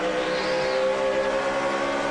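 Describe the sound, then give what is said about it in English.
Stock cars roar at full speed with four laps to go, a loud, steady engine drone with sustained high-pitched whine, heard from inside Denny Hamlin's No. 11 car as it races alongside Kurt Busch for third, no voices. “You're watching from Hamlin's car.”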